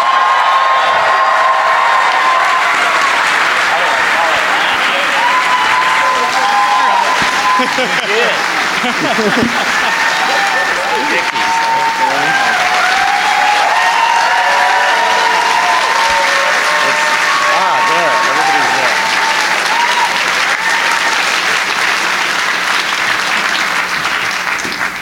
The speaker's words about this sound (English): Ladies and gentlemen, this is like the Mick Jagger of theme park design, okay? When he comes out here, give him a Mick Jagger-like welcome and uproarious applause for Mr. Tony Baxter.